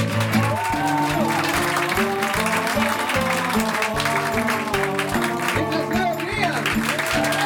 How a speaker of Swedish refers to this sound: Det var en sån jävla stark applåd.